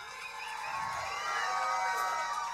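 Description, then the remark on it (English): An audience applauds and cheers for a choir, a steady wash of clapping with a few whoops and shouts rising over it, holding at an even level throughout. “Please, if you haven't already given them a big round of applause, give it up for the choir.”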